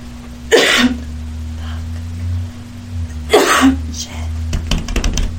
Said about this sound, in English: I gotta stop you because I'm gonna cough and I'm probably gonna say cuss words.